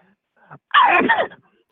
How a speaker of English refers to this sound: Sorry about the sneezes, boys. I mean, you can train all you want for anything. You can't fight allergies.